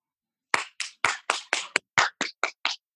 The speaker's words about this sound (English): It's 7 o'clock. Everyone's clapping in New York. Can you hear? Oh yeah! Holy shit! Holy shit, man.